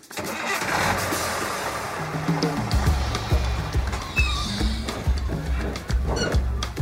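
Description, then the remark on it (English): A bus engine rumbles steadily, its deep drone holding throughout with a few shifts in pitch as the revs rise and settle, with a faint background clatter. “You climb up the steps to a crowded bus and you take your seat.”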